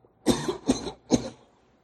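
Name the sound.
coughing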